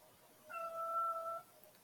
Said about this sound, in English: That's Emmett the cat letting me know he wants to go out.